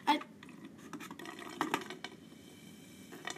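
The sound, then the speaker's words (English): Someone slurps a sweet tea: a sharp wet suck at the start, then a gurgling, bubbly stretch of liquid noise with louder slurps midway and again at the end. “That's some real stuff. Right that there. Is a real. Slurp of a soda.”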